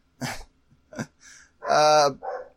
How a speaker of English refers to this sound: Your dogs agree. What is he barking at? There's nothing. It's a bird.